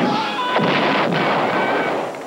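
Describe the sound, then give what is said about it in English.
Loud, dense bursts of arcade game explosions and blaster zaps crowd together in a continuous noisy barrage, with sharp sweeping laser tones cutting through near the start and middle. “In a galaxy of video games, there is only one. Star Wars, the arcade game.”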